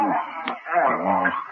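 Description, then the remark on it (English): A dog whimpers and lets out a few short, high yips, the whining sounds rising and falling over a brief moment. “Best dog I ever had.”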